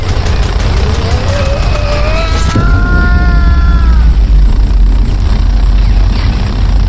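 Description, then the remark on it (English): Rapid bursts of gunfire from an army of bat drones chatter over a loud whirring, rising mechanical whine as they fire on Red Robin, then a single massive explosion booms and leaves a heavy, lingering low rumble. “In a hail of gunfire from the drones ending with a massive explosion, Red Robin is gone.”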